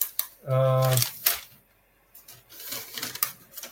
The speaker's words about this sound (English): Forgive me for shuffling papers.